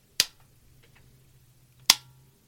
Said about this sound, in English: Water, slowly, but surely, dripping into his canteen.